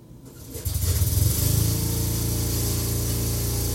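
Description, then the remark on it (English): A real lawnmower engine, taped for a music track, sputters into life, revs up over the first second or so, then settles into a steady, loud, buzzing drone with a low rumbling hum. No one speaks. “That's a real lawnmower that you hear.”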